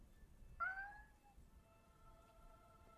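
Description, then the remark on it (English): A single meow from a cat named Boots, a short rising cry lasting about half a second, then fading, with no talking. It sounds fairly soft over a quiet low rumble. “That was Boots. Okay. Oh. How I was like, cute what of the a meow”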